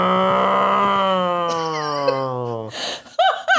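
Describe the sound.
A loud, droning engine roar holds steady for a few seconds, its pitch sliding slowly downward as it passes, then cuts off and people begin talking.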